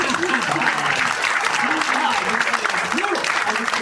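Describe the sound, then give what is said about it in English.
Steady audience applause fills the whole stretch, a dense wash of many hands clapping at an even, loud level, with some voices murmuring underneath. “Obviously, big round of applause for this fucking guy.”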